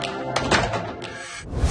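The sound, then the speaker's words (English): A door being shut: a brief scrape and swing of noise, then a dull thunk as it closes, with a faint latch click. No voices are heard. “can you close the door?”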